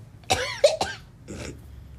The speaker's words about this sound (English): I'm sorry, I just started coughing. I'm sorry, everybody.